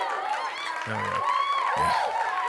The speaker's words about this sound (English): Thank you, Jay Lee. Are we clapping it up? Let's clap it up for Jay Lee.